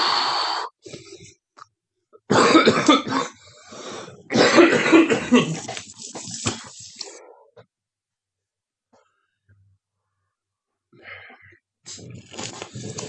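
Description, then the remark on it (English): A loud coughing fit: several harsh, throaty bursts in quick succession, then a long quiet pause before a few more rough coughs and throat-clearing sounds near the end. “I'll punch at the start next time so we can cough for the whole hour.”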